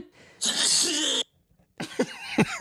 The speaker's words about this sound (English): What was that one? That is the worst soundboard thing ever. It says sneeze. And they cut the guy off and just go the whole way.